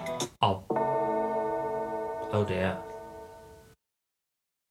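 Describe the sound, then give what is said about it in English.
A single video game bell, the first of the bells, strikes and rings out, a bright sustained tone holding for about three seconds before cutting off. A voice speaks briefly just before it and again over the ringing. “That'd be the first bell.”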